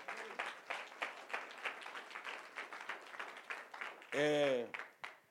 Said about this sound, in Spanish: Un aplauso al Señor.